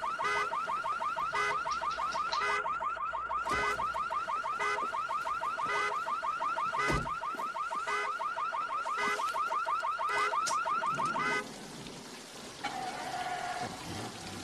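vehicle, car alarm blaring

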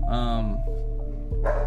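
animal, dog barking

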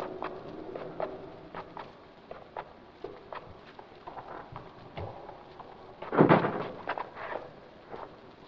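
household object, door slammed shut

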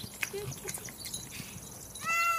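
animal, cat meowing

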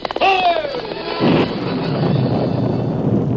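nature, wind

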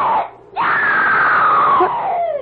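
human body sound, a person screaming

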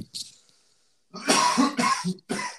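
human body sound, heavy coughing fit

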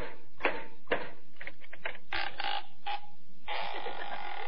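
impact, knocking on a door

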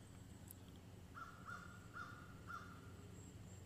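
bird, crow cawing

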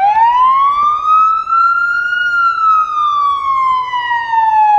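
vehicle, fire truck siren

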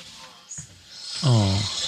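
human body sound, man snoring loudly

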